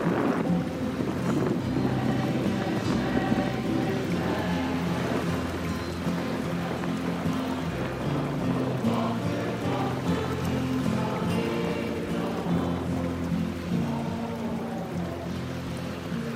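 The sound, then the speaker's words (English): Heavy hurricane rain and wind roar steadily and loudly throughout, a dense, unbroken wash of noise with low droning tones running underneath and no voices. “Just close your eyes. Hear the hurricane, see the water”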